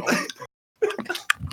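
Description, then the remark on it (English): Wet, squishy mouth sounds of a horse named Nuke chewing Nuke chews tobacco, coming in two short bursts separated by a brief silence, with smacking and slurping noises and no one talking. “A fucking horse chewing tobacco.”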